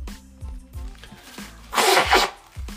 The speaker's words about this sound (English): Hold on, wait a minute. I'm going to have to blow my nose. 1 minute, guys.